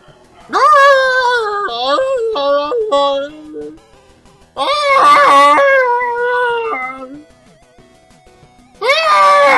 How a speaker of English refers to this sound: so I think my dogs are gonna go off.